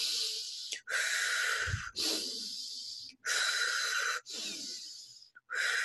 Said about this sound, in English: Circular breathing brings us up. And so if you notice you're starting to kind of cool off, become apathetic, depressive, you're disassociating, you're checking out, circular breathing is just inhale, exhale, inhale, exhale.